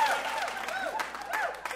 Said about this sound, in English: Major clappage.